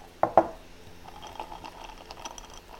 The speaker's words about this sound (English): And man, I'm pouring it in a glass with ice because I got it out of the cupboard, okay?